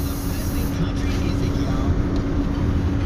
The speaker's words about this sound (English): Spraying some air freshener. We kind of smoked out the truck, but it's cool.